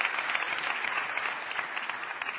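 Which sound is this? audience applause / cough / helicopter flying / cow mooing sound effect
audience applause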